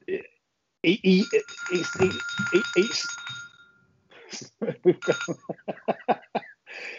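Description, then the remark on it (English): A telephone rings steadily at moderate volume underneath overlapping talk, its electronic tone holding for a couple of seconds before fading while people keep speaking. “It's phone calls and sirens.”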